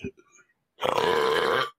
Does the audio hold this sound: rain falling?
no